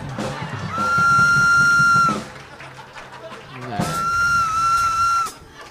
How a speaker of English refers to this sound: That's my rape whistle.